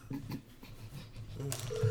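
A faint outgoing-call ringing tone starts near the end, a steady electronic buzz over low background rumble and muffled noise.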